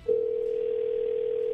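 A steady, continuous telephone dial tone as a call is placed from radio station New Country 103.1 starts abruptly and holds at an even pitch and volume throughout, clear with no voices.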